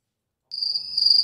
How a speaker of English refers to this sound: I'm doing crickets right now.